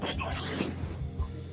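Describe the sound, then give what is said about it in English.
A dog barks and yips in a brief, noisy burst, fairly loud, with a rough, cluttered background and no clear talking. “Jeez. Dogs.”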